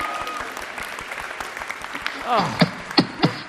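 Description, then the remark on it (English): An audience applauds in a dense, steady wash of clapping, with a few sharp whoops and shouts rising over it toward the end. “Let's give Lucy a final huge round of applause.”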